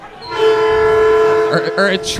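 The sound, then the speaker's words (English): A loud train horn sounds one sustained, steady blast for about a second, then breaks into shorter wavering tones as it fades out. “Or a train perhaps.”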